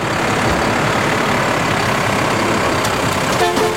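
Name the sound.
garbage truck engine running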